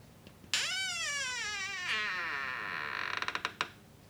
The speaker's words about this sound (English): That's a very sad door. Why must my door make this sound? Sounds very sad.